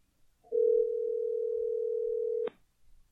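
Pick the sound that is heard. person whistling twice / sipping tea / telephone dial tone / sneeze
telephone dial tone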